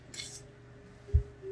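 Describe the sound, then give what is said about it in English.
A quiet, airy slurp of a sip of water, followed a moment later by a soft low thud, like a cup being set down. No one speaks. “Another water break.”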